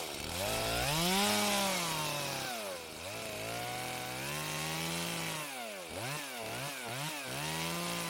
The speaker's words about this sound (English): Gas powered. That was her move. Run and get the chainsaw.